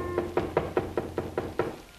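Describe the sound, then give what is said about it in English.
Someone raps on a cabin door at about 11 o'clock at night, about seven times in a quick, steady series of solid knocks, with no voices around them. “It was about 11 o'clock, and we'd started to go to bed, intending to get up as early as possible the next morning when there was a knock on the door.”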